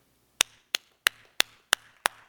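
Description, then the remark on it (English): A quiet, polite golf clap: six soft, evenly spaced hand claps at a slow, steady pace, each a sharp crisp smack that fades quickly, with no voices. “That's a golfer's clap for sure.”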